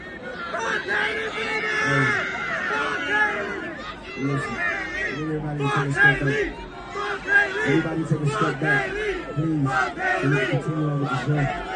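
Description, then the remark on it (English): A large crowd at the Rolling Loud festival chants "F Hailey Bieber" together in loud, rhythmic bursts, many voices blending into a continuous roar of massed yelling with a repeating cadence throughout. “The crowd chanted, F Hailey Bieber.”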